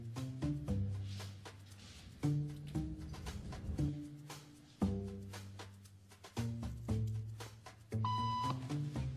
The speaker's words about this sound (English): It doesn't take long for our test subject to notice a pattern. Beep means stand up. But why? And if you were in her shoes, what would you do the next time the tone sounds?